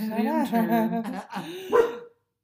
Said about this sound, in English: Sweetheart. Angel baby. Please... Stop barking.